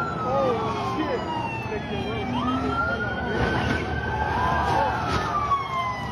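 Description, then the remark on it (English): A police siren wails in slow rising and falling sweeps as police arrive where a truck is doing donuts in backed-up traffic, steady and fairly loud, over a dense wash of traffic and crowd noise with indistinct voices mixed in. “Here comes the cops, right? The cops have seen this.”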